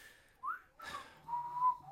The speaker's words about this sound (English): Look, there's someone outside the window. I can hear him whistling.